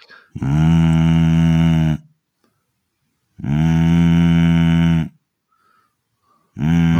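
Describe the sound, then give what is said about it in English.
A voice imitates a cow, giving two long, loud moos with a pause between them, then starting a third at the very end. No talk is heard. “I think a cow's walked in. Yeah, it was a bit cowy, that.”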